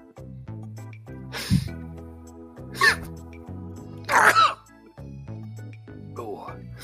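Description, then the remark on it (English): A voice fakes three exaggerated sneezes in a row, each a short loud breathy burst a second or so apart, with a steady low tone humming underneath. “Like somebody's getting bored and making themselves sneeze.”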